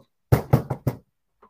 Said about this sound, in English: Knock on what, sir? You ain't knocking on nothing.